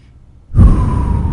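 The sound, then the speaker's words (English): After a moment of near silence, a breathy rush of air begins and holds steady, a slow, full exhale after a deep breath in during a deep-breathing exercise, with no talking. “take one deep breath in and then exhale fully while paying attention to your body”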